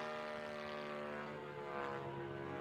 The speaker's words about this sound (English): I've always had the passion for radio control model airplanes, which is truly a fun hobby.